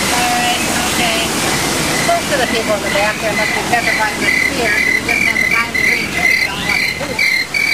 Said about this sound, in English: Now, I know it would really be cool to go through the falls. And I've always wanted to go through, but I can't.